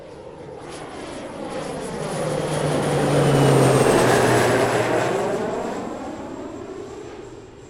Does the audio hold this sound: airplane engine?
yes